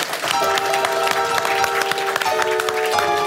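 Steady applause from an audience at the close of an evening show, dense crackling claps that run for the whole stretch while a musician plays sustained musical tones underneath to play the audience out.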